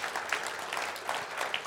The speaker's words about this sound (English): Okay, so that's brilliant. Yeah, you can clap.